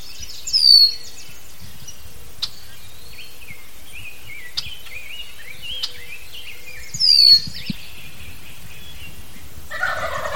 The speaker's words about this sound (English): I'm just walking on the trail near our yurt. Being yelled at by a red-winged blackbird.